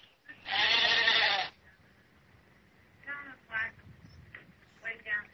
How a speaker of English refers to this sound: And you're covered in sheep now that have anthrax? There's sheep all around me.